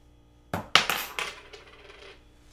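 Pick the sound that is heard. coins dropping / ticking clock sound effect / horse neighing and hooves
coins dropping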